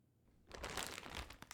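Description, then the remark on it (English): After a brief quiet moment, crinkling and rustling of paper erupts and continues in a dense, uneven burst of crackles, like a paper towel being pulled and crumpled. “Oh my God, I have to get a paper towel.”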